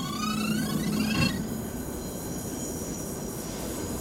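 A tram rolls along its rails, a rising electric whine and faint squeal at first giving way to a steady rumble of wheels on track; no one speaks.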